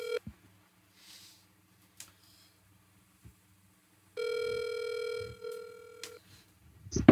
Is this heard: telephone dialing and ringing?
yes